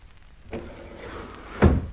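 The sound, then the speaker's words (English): Lift doors slide shut with a soft rumbling glide that ends in a firm, low thud, followed by a brief mechanical hum. No voices are heard. “We are in a lift.”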